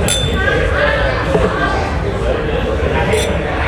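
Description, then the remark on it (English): Glasses of 10-year-old Irish whiskey clink together in a toast, bright brief chimes rising above a murmur, with voices chattering throughout. “So let's cheers this 10 year.”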